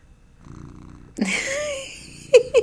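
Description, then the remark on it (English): Midnight, a cat and the Tea and Whiskey mascot, purrs with a low, steady rumble, then a louder, breathy burst of sound follows, ending in two quick, sharp chirps. “Maybe y'all can hear him purr a little bit.”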